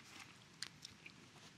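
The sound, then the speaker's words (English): Chewing a juicy apple close to the microphone: a few soft, crisp mouth clicks spaced irregularly over a quiet, hissy background, with no one talking. “I don't want to be chewing into the mic.”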